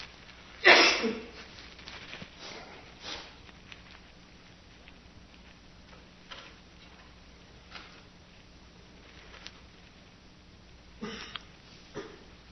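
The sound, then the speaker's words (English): A sharp cough breaks the quiet near the start, followed by scattered softer coughs and small rustles from the audience and the speaker at a talk on full awareness of breathing, with another pair of coughs near the end. “Actually, I don't mean this, but a humorous memory comes up with all the coughing, including my own.”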